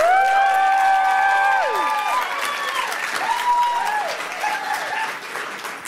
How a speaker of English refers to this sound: So with that, please join me in giving a huge round of applause to our first speaker